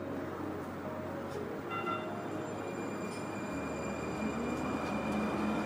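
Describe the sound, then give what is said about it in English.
A Valley Metro light rail train in Phoenix, Arizona, rumbles steadily past, its low roar mixed with metallic whines and faint wheel squeals, loud and continuous throughout with no voices. “It includes the light rail running through Phoenix, Tempe, and Mesa, along with a network of bus routes that spans Valley municipalities.”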